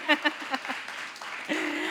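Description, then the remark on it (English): A brief burst of about five or six sharp hand claps in a quick, steady rhythm, growing softer, before a voice begins speaking. “I'll give her a little clap.”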